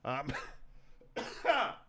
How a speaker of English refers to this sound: Dude, I was over it yesterday. I did not cough very much at all. Slept great last night. And now here I am, a snot faucet, and I'm coughing.